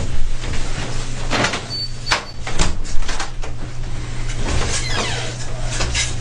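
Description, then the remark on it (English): A door opens with a series of rattling, scraping clacks over a steady low mechanical hum, fairly loud, with no voices. “Doors open.”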